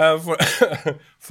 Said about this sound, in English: I'm still recovering from a nasty cold, but... So excuse me for the coughing